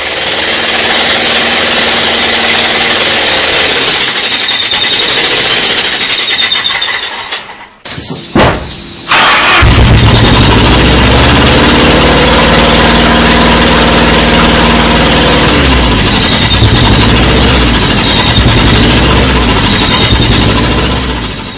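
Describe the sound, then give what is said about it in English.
A rough, uneven engine idle misfiring with a lumpy, stumbling rhythm as the engine runs on only half of its cylinders, loud, briefly cutting out around the middle before restarting and chugging on unevenly. “This video is an engine working on half of the cylinders that it contains.”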